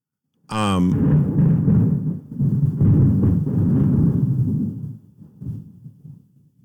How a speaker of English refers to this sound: Sorry, I just love thunder.